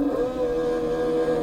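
A 1960s racing motorcycle engine that revs to 20,000 RPM and has to be push-started idles at a high, steady pitch, a loud, constant buzzing drone, unbroken, with no voices over it.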